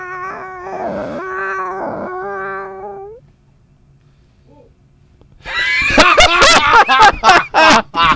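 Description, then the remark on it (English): A drawn-out, wavering meow-like cry gives way after a pause to a loud run of sharp barks, about eight quick bursts, apparently a human voice imitating a dog. “Something barked. I don't know what it was.”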